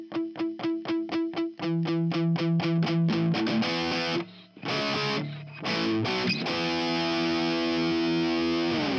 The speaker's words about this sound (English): Cool intro, huh? It fits this episode because we're going to talk about some metal.